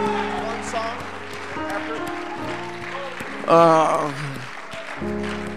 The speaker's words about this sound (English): Can everyone give the Lord a hand clap of thanksgiving and praise today? Amen, amen, amen.